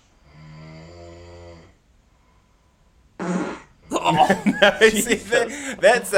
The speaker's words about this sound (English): You can tell that the fart is closer to the microphone than the snoring.